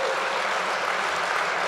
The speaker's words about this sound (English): So you should applaud that too. Yeah, yes, applaud me being wrong, please, yes.